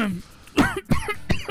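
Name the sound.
coughing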